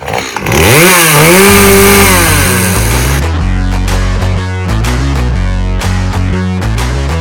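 A chainsaw revs up loudly for about three seconds, its engine pitch rising and falling, before giving way to rhythmic music with a pulsing bass line.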